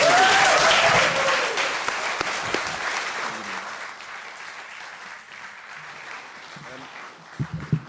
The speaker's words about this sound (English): Ladies and gentlemen, please can you give an absolutely enormous round of applause for Mr. Dan Antopolski!